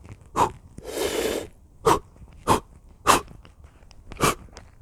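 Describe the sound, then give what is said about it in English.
A person demonstrates forceful rhythmic breathing: five short, sharp exhalations spaced at a steady beat, plus one longer hissing breath near the start, fairly loud, with no talking. “was like breathing like that, and with every out breath I was doing a move and jumping”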